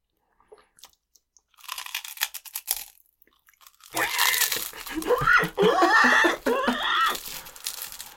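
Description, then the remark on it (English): Loud crunching of fresh, crispy roasted hog skin: a burst of sharp crackly bites, a brief pause, then heavier continuous chewing mixed with muffled, squealing vocal noises from the eater. “I'm trying to crunch up to 11. Taking my crunch to the next level.”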